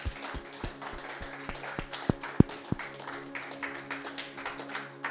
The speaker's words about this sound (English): Can we clap our hands in this place?